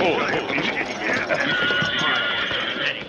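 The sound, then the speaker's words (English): Horses, including one named Silver, shuffle in place as three men dismount and turn them away from an oncoming sandstorm, hooves clip-clopping irregularly beneath a steady, dense wash of noise, with a voice-like murmur mixed in. “The ominous black wall moved closer, and the whine of the wind grew stronger as the three men turned their horses' backs toward the oncoming storm and covered the animal's eyes and nostrils.”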